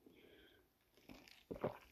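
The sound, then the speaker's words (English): A sip of iced coffee: a soft slurp followed by a burst of crunchy, rattling ice clicks near the end, quiet overall with no talking. “Love the ice. Here, let me take a sip.”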